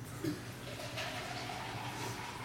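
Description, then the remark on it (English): Tap water pours steadily into a glass for a couple of seconds, a soft continuous splashing rush heard fairly quietly, with no voices over it. “You brave drinking this tap water.”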